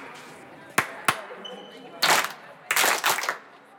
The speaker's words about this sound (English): Good. That clap means that my club heard my voice.